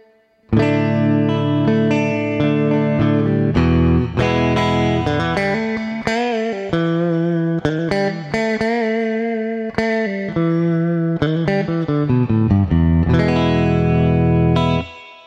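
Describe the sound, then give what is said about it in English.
An electric guitar plays sustained chords and picked notes drenched in spring reverb, each attack trailing off in a splashy, slightly dripping echo; loud, with no voices. “Here's the spring that I've been using. Hear that little echo there? Kind of has a drip in it.”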